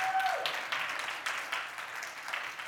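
An audience applauds, many hands clapping together in a steady, dense wash of sound that holds at an even, moderate level throughout, with no voices standing out.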